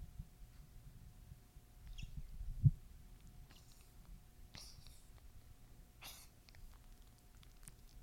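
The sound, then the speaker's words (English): A dog named Fozzie Bear gives a few small, breathy coughs, short raspy bursts spaced a second or so apart, fairly quiet over a low steady hum. “That was his little cough.”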